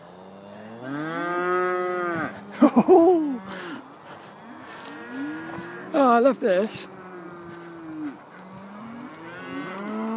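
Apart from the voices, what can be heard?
cows mooing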